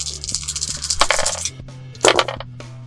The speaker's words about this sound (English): And so I will roll this many dice.